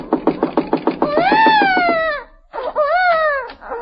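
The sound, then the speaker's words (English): A baby left alone in a house cries: a string of short, rapid sobs, then two long, high wails that rise and fall in pitch, loud and with no voices over them. “Leaving a baby in a house alone.”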